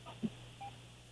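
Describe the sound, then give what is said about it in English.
A caller's phone line cuts out: a low electronic hum with a soft blip, then a single short beep tone, quiet and thin, with no one speaking. “He's ready to rock, and then all of a sudden the phone decided it was going to rock out.”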